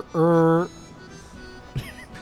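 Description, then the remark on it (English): A single loud, steady honk of a car's stock (default) horn sound, lasting about half a second, followed by quieter background voices and a brief knock. “That's the stock noise.”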